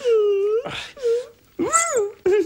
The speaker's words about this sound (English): So as she's hugging him, she sort of makes this, like, she squeezes him extra tight, and then there's this little sound like a squeak toy.